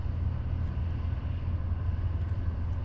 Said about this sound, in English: There's a crane across the creek. It's actually separating cars from other kinds of garbage, moving the cars into a giant barge, and everything else is leaving.